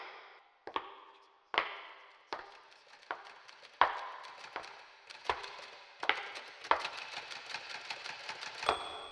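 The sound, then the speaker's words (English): Typewriter keys clack sharply on a typewriter standing on a table lit by a ceiling light fixture in the middle of a room, slow separate strikes at first, then a quicker run of typing, with a small bell-like ding and a final clattering return near the end. “So in what I assume is the middle of the room, there's a table with a typewriter on it, being illuminated by a light fixture on the high ceiling.”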